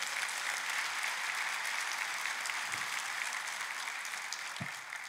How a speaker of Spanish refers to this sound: Date un aplauso a tú mismo.